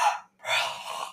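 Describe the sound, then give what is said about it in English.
A loud, breathy yawn: a short sharp intake, a brief pause, then a long drawn-out airy exhale with a faint low voiced undertone. No speech. “Well, it'd be easier if your yawn was quieter, but you're like...”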